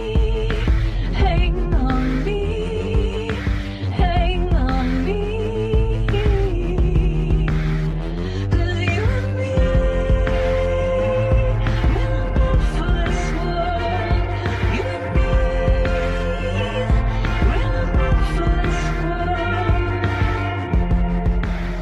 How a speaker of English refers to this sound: Pulsing, sliding, thumping bass.